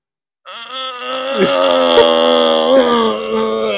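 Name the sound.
imitated gasping breath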